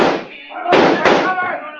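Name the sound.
gunshots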